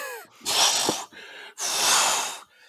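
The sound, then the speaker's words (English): Two long, heavy snorting breaths pushed out, loud and raspy, made by a person imitating a pug's wheezy breathing, with no talking. “Can I suggest you need to be eating cold pasta from the fridge whilst breathing out like a pug?”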